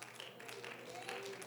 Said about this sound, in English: Oh, let's clap our hands for a moment and give Jesus praise right now.